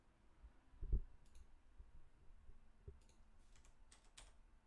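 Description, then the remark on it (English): Quiet tapping of computer keys in uneven bursts as someone tries to type a search for what movies Elizabeth Banks has directed, with a couple of heavier thumps near the start and a cluster of sharper clicks toward the end. “I hate your keyboard.”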